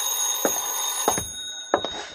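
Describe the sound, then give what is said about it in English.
A telephone bell rings continuously with a bright, high metallic tone, broken by three brief louder bursts spaced about half a second apart. No one speaks. “I was just tying my time when the phone rang.”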